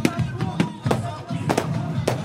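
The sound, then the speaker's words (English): Fireworks fill the sky during a Bachibola street celebration, bursting in a rapid, irregular barrage, sharp cracking bangs coming every fraction of a second and drowning out music, over a steady, murmuring background din of crowd noise. “As a barrage of fireworks fill the sky and drown out the music, the Bachibolas hit the streets, bashing their balls on the ground.”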